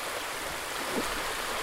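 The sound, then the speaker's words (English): Soft, steady wash of gentle sea waves, a continuous hiss of moving water at low, even volume with no distinct crashes, heard alone without any voices. “You are listening to the relaxing sounds of gentle sea waves, Soundscape for sleep.”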